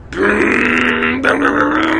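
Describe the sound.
A voice imitates a scooter engine revving for a ride on Razor scooters, with a loud, buzzing growl that holds steady, dips briefly, then surges again for about two seconds, with no spoken words.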